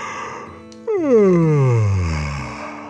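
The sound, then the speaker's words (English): A voice imitates a long, drawn-out yawn, one clear vocal sigh that starts fairly high and slides steadily downward over about two seconds, moderately loud, with no other talking. “The little wheelchair yawned”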